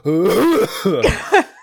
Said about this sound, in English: Kate would get really mad that I'm trying to clear my throat